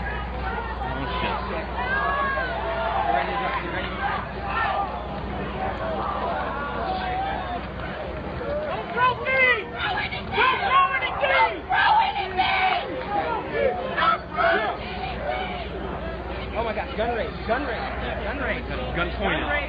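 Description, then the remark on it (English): A large protest crowd in Ferguson shouts and yells over one another in a continuous, dense roar of voices, with sharper individual cries breaking through midway, all sounding chaotic. “who people may remember from this clip of protest in Ferguson.”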